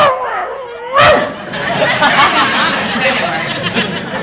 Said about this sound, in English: Oh, Mrs. Davis, we can't afford to feed this dog. Not if we want to eat, too.